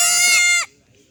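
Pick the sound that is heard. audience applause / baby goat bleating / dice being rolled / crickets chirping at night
baby goat bleating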